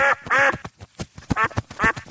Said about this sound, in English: Let me just start by reminding you that riding a duck across town is no picnic. I nearly fell off. Boy, am I glad you're here. I mean, the quacking and the flapping and more quacking, it's just undignified.